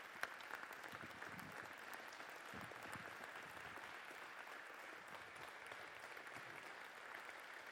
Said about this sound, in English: Come on, we love you. Yeah. We love you. Come on, you can stand up and clap for them.